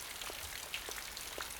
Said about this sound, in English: you can hear the rain, like right in front.